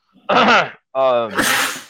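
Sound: sneeze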